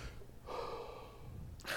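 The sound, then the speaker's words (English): Breathless gasping and heavy panting after running around a house, a long drawn breath followed by a sharp intake near the end, with no talking. “Anyway, let me catch my breath because I just had to run around my house.”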